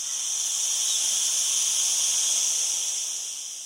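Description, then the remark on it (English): A steady, high-pitched drone of cicadas buzzing continuously with no break, loud and shrill like a chorus of insects, with no voices present. “If you said those are cicadas, you're right.”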